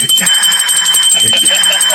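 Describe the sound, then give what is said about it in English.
A loud bell rings steadily for about two seconds, a bright, high, sustained metallic tone with a shimmering pulse, while voices talk faintly underneath. “He get the bell. He get the bell again.”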